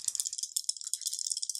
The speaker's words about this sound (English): So I'm going to roll the 5d8 now.